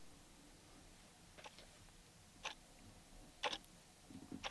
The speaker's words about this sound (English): Okay. So now your dot will be ticking like a bomb that will go off in, I don't know, 4 minutes?